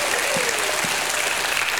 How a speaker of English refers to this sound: Give God a hand clap and a shout of praise in the house.